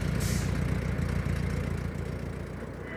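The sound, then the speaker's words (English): Deep, rumbling car engines in a film idle and rev steadily, a dense low-frequency growl that stays loud throughout with a brief hiss near the start. “Love the sounds of those cars.”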